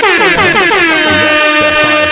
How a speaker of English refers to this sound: Air horns for Paula Patton one time.